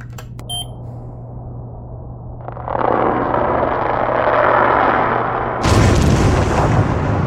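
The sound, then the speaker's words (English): High-pitched underwater bubbling rises out of a low steady hum, a dense churning wash that holds loud, then bursts brighter and harsher for the final seconds, with no voices. “What's most interesting about this is that high-pitched bubbling sound.”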